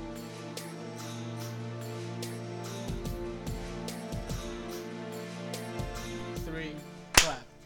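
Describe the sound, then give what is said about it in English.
A single sharp, loud burst of hand clapping as several people clap once together on a count of three, striking near the end over a steady, low humming background. “Three, clap. Can we clap one more time?”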